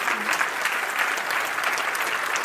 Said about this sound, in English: I'm going to wait while you all clap your hands. How's that?